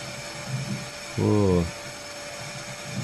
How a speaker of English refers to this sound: Oh, hoovering.